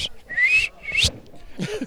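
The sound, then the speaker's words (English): A person whistles two short, bright rising-and-falling notes, with faint breathy background noise and a brief murmur of voice near the end. “I was like, is he still whistling?”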